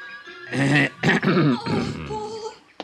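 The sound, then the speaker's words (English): A man gives a loud, deliberate cough: a few gruff, raspy bursts in quick succession, trailing off into a low throaty rumble. “My cough must have been pretty frightening, because the boy took off around the house like a quarter horse.”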